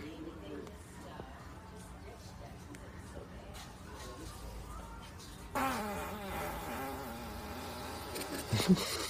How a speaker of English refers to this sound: Good fart. I like how the kid turns around like, damn. Yep. And that's good tone, right?